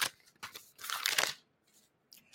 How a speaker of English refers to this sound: Ladies and gentlemen, if you are listening on a podcast streaming service, I had a piece of paper with some notes on it, and I ripped it in half.